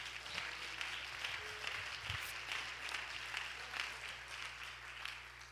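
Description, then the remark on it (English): An audience claps hands together in praise of the Lord, a dense, steady wash of applause from many people that holds evenly throughout, moderately loud with no voices over it. “Go ahead and give the Lord a hand clap of praise.”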